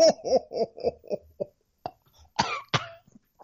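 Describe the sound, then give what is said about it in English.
Someone coughs in a quick run of short, raspy bursts that fade, then follows with a few louder, harsher single coughs after brief pauses. “I'm leaving in the cough.”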